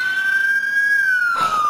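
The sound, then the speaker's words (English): A voice imitates a police car siren with one loud, steady wail that rises slightly, holds, then slides downward, alone with no talking. “It could be a police car, too.”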